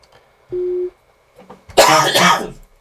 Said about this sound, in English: Oh, man, I need to cough very badly there, because I think I got a bad tickle in my throat. I apologise for that.